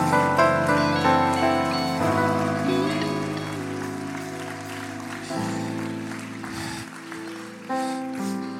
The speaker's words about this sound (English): Would you stand with me? And if you receive this word, would you clap your hands as unto the Lord right now?